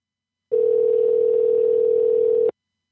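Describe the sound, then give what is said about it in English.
A steady telephone dial tone hums at an even, unchanging pitch for about two seconds, then cuts off abruptly, as someone dials to call the winner. It is fairly loud, with no voices and no distinct key presses. “Calling the winner right now.”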